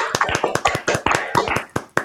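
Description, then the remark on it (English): Three people clap together for a couple of seconds as a genuine round of applause, not an added effect, their sharp hand claps overlapping in an uneven patter with no voices. “Now, there's only three of us here, but I think a round of applause for Bob.”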